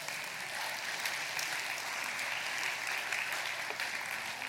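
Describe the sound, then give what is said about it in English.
An audience applauds steadily, a dense wash of many hands clapping at an even level for several seconds with no voices standing out. “You can clap. That's okay.”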